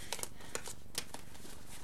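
Tarot cards being shuffled: a quick series of soft, crisp flicks and riffles, quiet and a little uneven, with no one talking.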